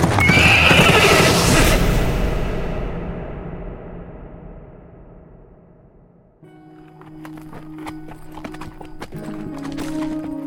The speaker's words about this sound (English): The horse and its rider went past him like a thundering shadow to be swallowed in the darkness.